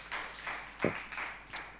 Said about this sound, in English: If you're a first-time guest, this round of applause is for you. We want you to know that you are welcome here.